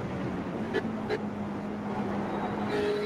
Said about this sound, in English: Right on the limit of that little four-cylinder Audi, screaming away as they head up the hill.